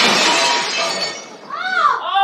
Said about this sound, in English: They're going to break our dishes.